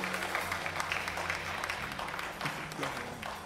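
A church audience gives the Lord a round of applause during a live-streamed service, a dense wash of many hands clapping at even loudness throughout, with a low sustained hum of music or organ tones underneath.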